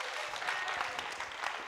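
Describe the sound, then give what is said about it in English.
An apostolic church audience claps in praise to the Lord in a steady, dense burst of applause, many hands overlapping into a continuous crackling wash with a few faint voices mixed in. “Come on, clap your hands and shout unto the Lord.”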